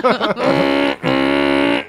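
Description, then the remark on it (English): A voice imitates an air horn: a few short warbling bursts, then two long, loud, steady buzzy blasts with a brief gap between them. “Air horn.”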